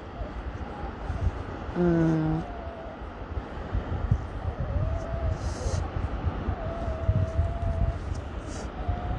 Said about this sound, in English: I don't know if you guys can hear the ocean back there, but it's amazing. And there's a boat. I think it's what you say, like the crew boat, like a maintenance boat, beach maintenance boat.